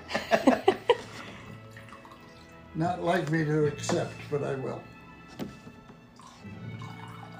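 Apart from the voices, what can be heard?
pouring a drink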